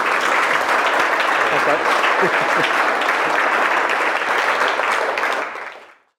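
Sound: audience round of applause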